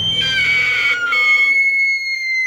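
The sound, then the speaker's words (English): An old man gives a single piercing, high-pitched shriek, loud, held for a couple of seconds before thinning out and fading away, with no talking. “He shrieked once.”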